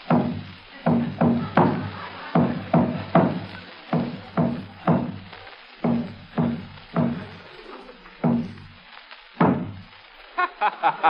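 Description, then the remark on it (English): A human heartbeat, amplified by a machine whose microphone is placed on a person's chest, pounds out a steady lub-dub rhythm, loud, deep, booming thumps in pairs repeating about once per second, with no voices over it. “A machine which enables us to hear a human heartbeat amplified many times.”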